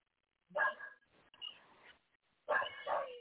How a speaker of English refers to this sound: Because I hear a dog barking. Yeah, time to start. Poor dog. Poor dog, 2 days. Y'all got a stray dog?